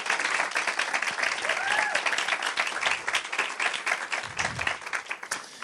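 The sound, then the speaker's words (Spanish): Loud, sustained applause from an audience welcoming a speaker, a dense wash of many hands clapping steadily for several seconds, with a brief whistle-like tone and faint voices mixed in. “Quiero pedirles que me la reciban con un fuerte, fuerte, fuerte aplauso.”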